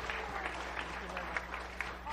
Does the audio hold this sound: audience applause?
yes